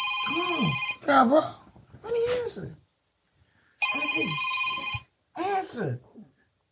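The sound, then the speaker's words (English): A telephone rings twice in loud, steady electronic bursts with a pause between them, while a voice talks over and around the rings. “It just ring. Let me answer.”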